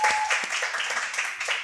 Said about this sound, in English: Oh, you can clap. Yes, you can clap. Expect that. Oh. Then let's keep the round of applause going to Wael. He's an audio expert.